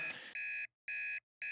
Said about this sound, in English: All right. Yeah, that's the timer. That's the timer.